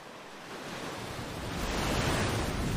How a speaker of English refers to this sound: Tiny waves, dude. You can't, rip, you can't rip a wave, dude.